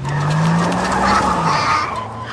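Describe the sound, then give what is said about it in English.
A school bus's tires screech sharply as it pulls away, a strained engine hum running underneath, loud for a couple of seconds with no voices. “I'm 100 years old and I drive a school bus.”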